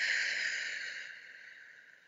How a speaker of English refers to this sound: So take a breath. In through your nose. Out through your mouth. Almost like you're pushing air out of straw. So take another deep breath in through your nose. Out through your mouth.